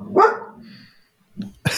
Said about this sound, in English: your animals are, your dogs are upset. Pay attention to me.